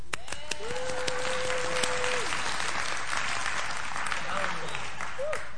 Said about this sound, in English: Let's do 3-4 claps.